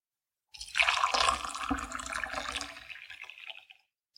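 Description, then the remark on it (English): Water pours steadily from one of two same-size jugs into a glass for about three seconds, a bright splashing gurgle that fades as the flow trickles off. Fairly loud, with no voices. “Now, for those of you experiment-minded, same size jug, same volume of water, same type of glass.”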